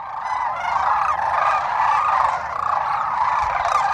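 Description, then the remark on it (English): A loud, continuous chorus of trumpeting crane calls, many birds overlapping in a dense, honking clamor that fills the whole stretch with no pauses. “There was these like spectacular cranes. They were so loud and beautiful.”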